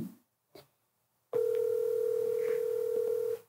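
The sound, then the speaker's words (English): A phone line rings on an outgoing call: one steady electronic ringback tone lasting about two seconds, clear and alone, after a couple of faint brief clicks. “Girl, answer the phone.”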